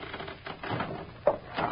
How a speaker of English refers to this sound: Nothing but the rafters creaking. Can't you feel the whole building sway when the wind blows? It's that old.